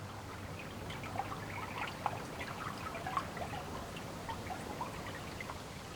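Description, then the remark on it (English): A river flows steadily beside a spot where cyclists have stopped for a picnic lunch, its continuous rushing wash dotted with small bubbling splashes and trickles. No one speaks, and the water stays at an even, moderate level throughout. “By this point, we were in need of rest and sustenance, so stopped next to the river for a picnic lunch.”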